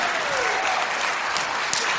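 An audience applauds the cast and crew of a staged story from Acts chapter 10, a dense wash of many hands clapping at once, loud and even for about two seconds, with no voices standing out above it.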